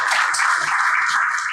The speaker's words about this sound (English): Let's have a wonderful round of applause for these incredible people. Thank you so much.